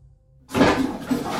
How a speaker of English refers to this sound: I'm trying to flush the heroin down the loo.